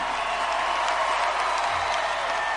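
A large audience at the VMAs awards show applauds and cheers in a dense, continuous roar of clapping with scattered shouts, loud and sustained for the whole stretch without letting up.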